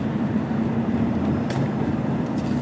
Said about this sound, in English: All right. It's this traffic. I'm just, should I get off?